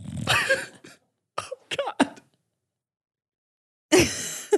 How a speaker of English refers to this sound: Buckley is snoring. I was hoping you couldn't hear it. Everyone can hear it. Yeah, get the mic up on Buckles.